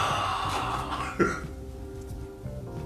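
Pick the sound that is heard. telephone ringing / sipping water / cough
cough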